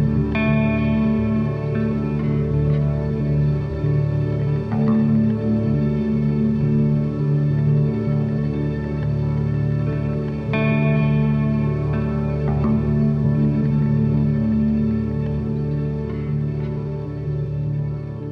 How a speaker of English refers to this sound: It's just swirling guitar, sort of looped ambient bits with lots of reverb, and then sort of slightly meandering melodies over the top, and it's really gorgeous.